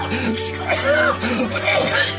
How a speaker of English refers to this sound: And all of them are just coughing and sneezing, and they're just going to become strong.